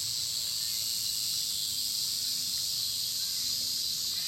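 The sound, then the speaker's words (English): A steady, high-pitched insect drone, like locusts humming, fills the air without pause, a shrill buzzing wash with a thin whine on top and a faint low rumble beneath. “The hum of locusts rose in the air.”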